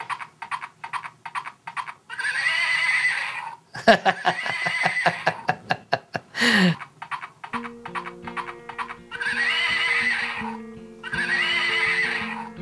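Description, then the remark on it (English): A little toy horse neighs repeatedly and loudly, with trembling whinny bursts and a fluttering snort in the middle, then steady electronic tones beneath the final neighs. No one speaks. “Sandra hands him this little toy horse that one of their friends brought Ralph.”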